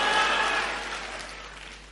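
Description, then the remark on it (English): A crowd claps their hands together in a dense burst of applause that starts loud and gradually fades over a couple of seconds, with no one speaking. “Clap your hands and shout, "I am the one."”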